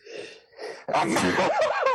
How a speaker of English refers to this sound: Oh my God! What the hell is that? That was a painful sneeze. That was like a Looney Tune sneeze. You know what I mean? Yeah, like that was like you were falling off a canyon sneeze.